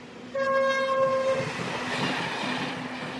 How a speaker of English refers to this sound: as it turns out, we could hear the express train coming. The train always whistles as it comes around the corner. I remember blowing about, 3/4 of a mile away from the station.